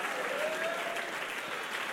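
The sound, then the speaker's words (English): Dense, steady applause from a large church audience standing in the sanctuary, many hands clapping at once in a continuous wash, with faint vocal cries and shouts rising through it. “Come on, jump to your feet, clap your hands and shout.”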